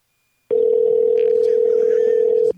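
A single steady electronic ringing tone from an outgoing phone call sounds for about two seconds, loud and even, then cuts off, with faint background noise and no one picking up, while another caller is on hold.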